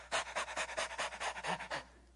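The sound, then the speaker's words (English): A person imitates a dog panting: about a dozen quick, breathy huffs in a steady rhythm, fairly loud, fading out at the end with no talking. “Any of you dog owners out there? You ever see your dog do this?”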